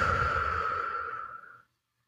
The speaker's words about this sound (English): Let's take a couple deep breaths. Breathing in. Breathing out.